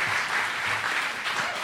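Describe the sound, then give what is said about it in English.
Steady applause from a show's audience for the guests at the end of the show, a dense, continuous wash of clapping that stays fairly loud and even for the whole stretch, with no voices standing out. “How about give them a round of applause?”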